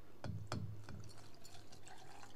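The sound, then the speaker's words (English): Liquid being poured into a glass, opening with a few gurgling splashes before settling into a steady, bubbling trickle. No one speaks. “For the SMR sake, we have to pour it up like this.”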